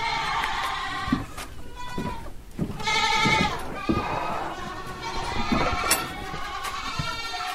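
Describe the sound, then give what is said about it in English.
Several young Alpine and LaMancha goats, about 4 to 5 months old, bleat repeatedly in a barn, their wavering, overlapping cries coming one after another with hardly a pause, over a steady background hum. “So all of these goats are like 4 months old, 5 months old.”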